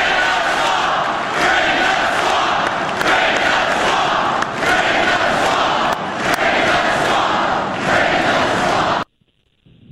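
A large crowd at a Trump rally cheers and roars continuously at high volume, a dense wall of shouting voices with occasional sharper yells, cutting off abruptly into near silence at the end.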